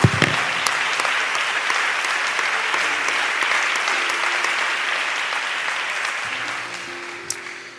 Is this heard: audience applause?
yes